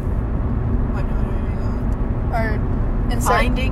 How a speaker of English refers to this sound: Oh, my God, a car. No way. No way.